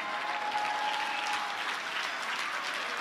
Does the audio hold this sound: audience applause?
yes